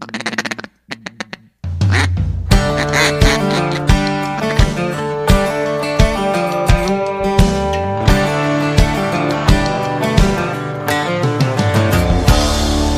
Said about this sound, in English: A mallard duck, yeah, that's what gets me.